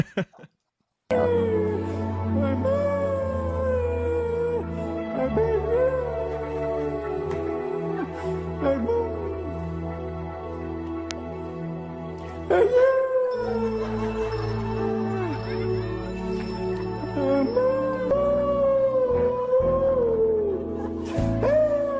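A woman sings a slow pop ballad over a steady instrumental backing track, her loud, wavering sustained notes sliding in pitch and sounding almost like a howl, continuously for the whole stretch.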